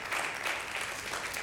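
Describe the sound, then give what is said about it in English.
Many people at a church service clap together for Jesus in steady, dense applause, a continuous crackle of hand claps at moderate loudness, with no distinct voices standing out. “One more hand clap for Jesus, and you may be seated.”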